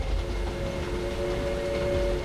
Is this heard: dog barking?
no